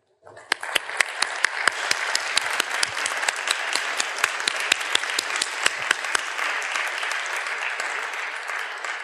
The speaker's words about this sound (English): And with that, I ask you to please give a warm, warm round of applause as we welcome to the stage